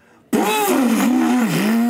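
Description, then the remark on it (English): A voice mimics a revving chainsaw: a loud, buzzing, harsh drone that bursts in suddenly and holds for nearly two seconds, its pitch wavering up and down like an engine being throttled. “Pulls out a chainsaw.”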